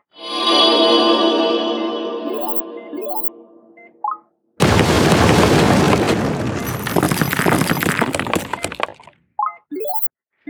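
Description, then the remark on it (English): A steady electronic tone fades out, then a single loud explosion bursts in and roars for several seconds before cutting off, followed by a few short squeaky chirps. “Oh, just an explosion.”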